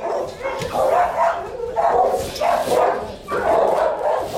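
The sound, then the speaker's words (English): Several dogs bark at once at a dog shelter in New York City, a loud, overlapping chorus, steady bursts of barking and yelping with no pause, filling the space. “In December, I went to a dog shelter run by Animal Care Centers of New York City.”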